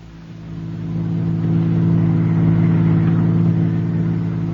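A car engine swells up after the first second into a steady, droning hum, as if pulling away, with no voices over it.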